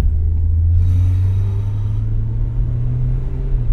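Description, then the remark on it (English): A taxi cab's engine hums with a deep, steady rumble as it drives along the streets, changing streets to keep away from another car. The low drone continues throughout with no voices. “So we just changed the street, sticking away from that car.”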